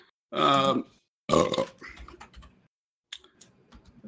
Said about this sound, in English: I'm burping.